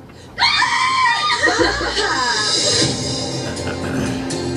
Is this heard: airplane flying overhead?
no